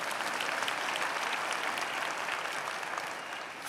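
An audience applauds steadily, a dense, even wash of many hands clapping at a constant level for several seconds, easing slightly at the very end.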